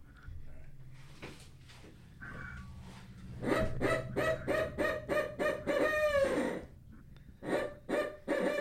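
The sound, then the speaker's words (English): A person imitates a barred owl with a rapid series of loud hoots, rising into a drawn-out wavering call before a few final hoots, after quiet background noise. “Now, what owl is that supposed to imitate? Because you hear them quite commonly. Barred owl.”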